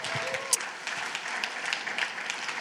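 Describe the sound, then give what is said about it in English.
A crowd applauding a speaker who has just been introduced, a dense, steady patter of many hands clapping throughout, with a few sharper individual claps standing out from the crowd. “Give him a hand, guys. Clap for him.”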